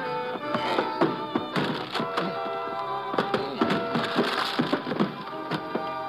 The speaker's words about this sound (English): I start throwing my shoulder against the door.